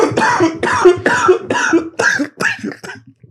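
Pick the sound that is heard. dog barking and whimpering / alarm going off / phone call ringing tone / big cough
big cough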